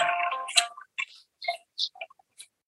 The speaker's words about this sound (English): So if you heard, I got a notification sound letting me know that that message was sent.